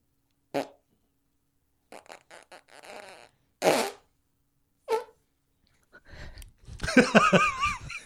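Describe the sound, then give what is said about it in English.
A fake fart blown with the mouth against an arm: a few short raspy blurts, then a longer, louder sputter that rises into a wavering squeak at the end. “I was intending for it to be like, I really opened my mouth on my arm on that one because I was hoping to make it more of a squeaker.”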